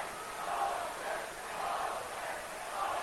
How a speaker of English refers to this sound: And some unhappy cheers from the crowd as the officials meet yet again.